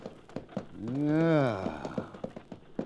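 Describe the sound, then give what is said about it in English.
Steady clip-clopping hooves of a horse-drawn stagecoach drawing near, the quick, even clops continuing throughout while a long, drawn-out call swells briefly over them midway. “There's a stagecoach coming.”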